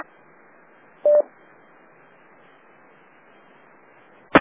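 A single short DTMF touch-tone beep from an amateur radio autopatch dialing 9-1-1 during a drill sounds over a steady bed of radio hiss, then a sharp click cuts in at the very end. No one speaks.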